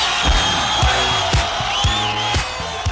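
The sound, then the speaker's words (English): A crowd cheers right after a short song sample on an album track, a steady, dense roar with a high whistle rising over the noise partway through and scattered low thumps underneath. “it's 6 minutes and 2 seconds, and then a crowd cheering immediately afterwards.”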